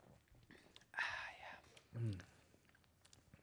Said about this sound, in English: So let's crack it open, boys, if you haven't already. I've already cracked one here. I'm gonna take a sip. Here we go.